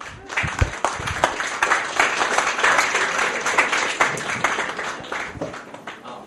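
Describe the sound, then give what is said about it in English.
An audience breaks into a steady round of applause for a volunteer called up from the audience, dense overlapping claps sustained evenly for several seconds with no voices standing out. “Big round of applause.”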